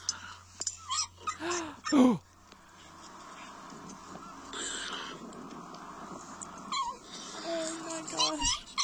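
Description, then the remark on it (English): A giant Pacific salamander gives several short, squeaky barks, like a small puppy yelping, in an uneven run. The calls are fairly loud over a steady background hiss. “Was that a video of a supposed bark from a salamander? From a giant Pacific.”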